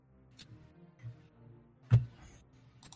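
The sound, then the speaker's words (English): Two small dice are rolled, rattling and clacking across a hard surface in a few quick ticking knocks, with one louder sharp clatter near the middle, fairly quiet. “I just realized I'm only rolling 2 dice.”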